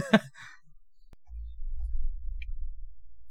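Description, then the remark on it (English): Loud heavy breathing right up against a headset microphone: a sharp breathy exhale, a short pause, then a sustained low, muffled rumble of air blowing across the mic. “Heavy breathing.”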